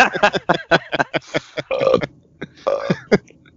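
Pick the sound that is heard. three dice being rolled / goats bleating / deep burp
deep burp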